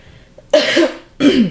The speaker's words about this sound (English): I'm going to cough. Wait.